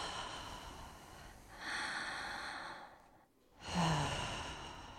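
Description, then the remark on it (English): Slow, deep breaths drawn in and pushed out through the mouth during a breathing meditation, each one a long airy rush with a brief pause between, fairly quiet with no talking. “So breath in through the mouth and out through the mouth.”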